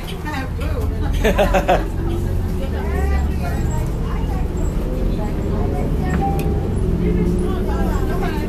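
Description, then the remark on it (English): A steady low engine rumble fills the inside of a city bus at Glendale Station on Halloween morning, with overlapping murmurs of passengers talking in the background and occasional rattles and clinks throughout. “We got the bus here already.”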